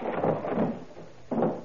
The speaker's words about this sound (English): Finding the room locked, the two officers break down the door. Once more, together. Now!